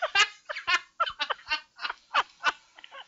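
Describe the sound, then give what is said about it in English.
About eight squawky, nasal honks from a squeezed inflatable rubber chicken toy, fired off in a quick uneven series, loud with no voices. “Patricia wants a chicken. I have to live for an inflatable chicken.”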